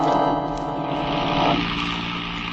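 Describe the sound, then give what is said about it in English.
A car engine hums steadily as the vehicle drives down Clay Street, a continuous, fairly loud motor drone with road noise and no voices. “He wheeled the car down Clay Street and we followed.”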